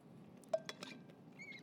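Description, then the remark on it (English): A few light, quick clinks and taps of a glass of water being handled as someone takes a sip, fairly faint, followed by a brief high ringing tone. No one speaks. “Let me get a sip of water and we'll knock the rest of this out.”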